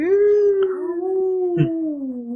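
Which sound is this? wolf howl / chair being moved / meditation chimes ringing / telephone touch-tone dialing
wolf howl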